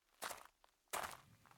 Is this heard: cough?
no